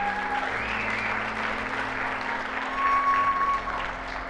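People applaud baptism candidates steadily at a church baptism service, a dense wash of clapping that swells slightly toward the end, with a low hum and a faint sustained tone underneath.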